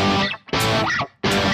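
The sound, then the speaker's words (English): Heavily distorted electric guitar strums three loud, buzzy chords with short breaks between them, and a squealing, sliding noise rises and falls as the fingers move between chord shapes. “And there's that noise that I'm talking about, only it's exemplified because I'm playing it with distortion, right?”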